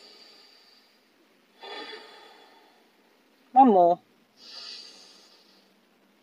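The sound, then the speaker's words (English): Three slow, deep, airy breaths drawn in through the nose, each a soft hiss lasting about a second, with a short spoken phrase between the second and third. “And I want you to take 3 deep breaths. In through the nose.”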